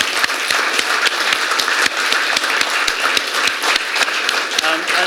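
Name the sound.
round of applause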